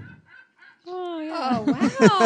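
A seagull squawks loudly: faint chirps, then one long drawn-out cry, then a quick run of harsh, raspy squawks.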